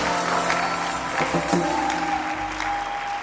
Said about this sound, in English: Anybody that is clapping, the blessing of God is upon you.